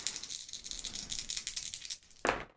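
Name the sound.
dice being rolled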